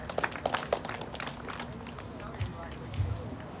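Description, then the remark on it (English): A church audience claps together after a prayer, a dense, steady patter of many hands that runs throughout at moderate loudness, with a few louder individual claps standing out and faint voices mixed in. “You can clap, that's fine.”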